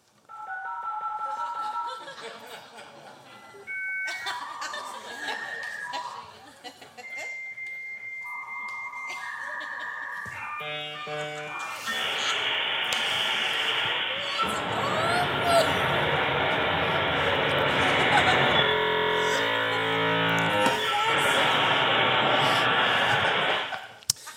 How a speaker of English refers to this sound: That, my young, ignorant friends, is the sound of a dial-up modem.